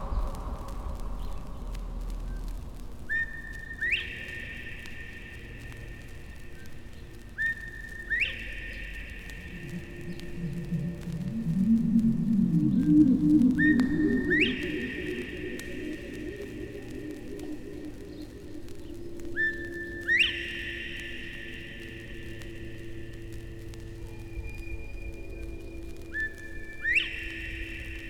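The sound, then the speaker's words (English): A Northern bobwhite repeatedly whistles its clear, rising two-note call, about five times at steady intervals, with a low rumbling hum swelling in the background midway. “Bob White.”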